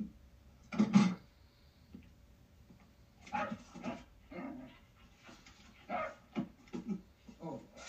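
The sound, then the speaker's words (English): A dog lets out a sharp, loud bark near the start, followed by a stretch of quieter, scattered sounds and soft panting-like noises. “That's more of a gunky bark, huh?”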